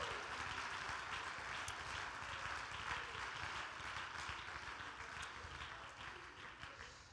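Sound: audience clapping hands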